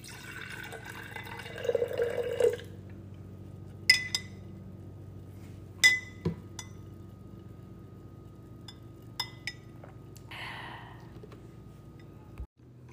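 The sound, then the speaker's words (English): Tea pours into a cup for a couple of seconds, its pitch rising as it fills, followed by a few sharp porcelain clinks and a soft splash. “So allow me to pour you a cup of tea while you settle in.”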